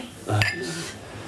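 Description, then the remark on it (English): Beer glasses clink together once in a toast, a sharp bright tap followed by a high ringing tone that fades over about half a second, with faint background murmur. “Oh, let's cheers to it. Yes, cheers, guys.”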